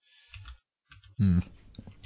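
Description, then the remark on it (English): Quick, light clicks of typing on a computer keyboard come in short bursts while a voice briefly talks over them. “But I'm pointing out the English media, as you can hear my activity typing.”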